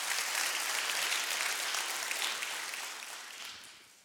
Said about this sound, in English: Hey, somebody give God one more hand clap of praise.